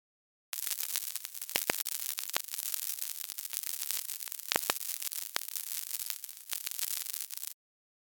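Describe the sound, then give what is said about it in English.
Sonified web server traffic: a steady wash of hissing static with faint swells, like small waves, broken by several sharp, scattered pops and clicks, with no voices. “This does exhibit a daily cadence, like small waves washing on a beach, though with some possible masquerading bad actor pops if you listen carefully.”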